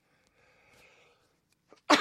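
A single sneeze: a soft, drawn-in breath builds for about a second, then a sharp, loud burst of air erupts at the end.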